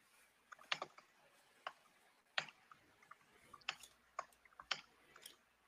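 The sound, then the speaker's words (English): Irregular bursts of crisp keyboard clicks, a few keys at a time with short pauses between, fairly quiet, with no voices, as someone types words into a script editor of a computer application. “For those listening in the podcast, he's typing some words in a script editor of the application.”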